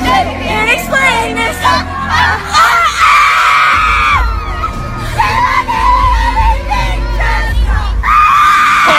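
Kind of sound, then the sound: crowd, girl screaming loudly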